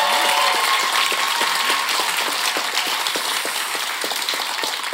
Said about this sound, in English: Yes, it is quiz time, and we've got some fabulous contestants on stage tonight. Could you please stand up and round of applause for our contestants?